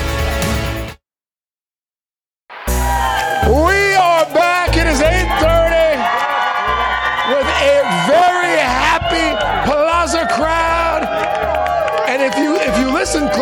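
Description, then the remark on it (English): A studio audience screams and cheers loudly and continuously, with high-pitched whoops and shouts rising over one of Hoda Kotb's favorite songs, played in honor of her birthday, after a brief silent gap at the start. “Over the screaming, you can hear one of Hoda Kotb's favorite songs.”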